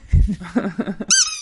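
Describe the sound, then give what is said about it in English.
Soft, low mumbling sounds give way to a single sharp, high-pitched squeak of a rubber squeaky toy squeezed as a buzzer in a game, loud, trailing off briefly at the end. “The dog's a slow squeaker.”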